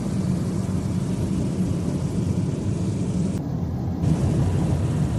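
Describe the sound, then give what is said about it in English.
A loud, steady roar of rushing air and engine noise fills an airplane cabin open to the outside through a big hole in the fuselage, constant throughout, with no voices. “Just a big old hole in the airplane.”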